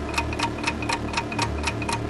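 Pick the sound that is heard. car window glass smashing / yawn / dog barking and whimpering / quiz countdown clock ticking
quiz countdown clock ticking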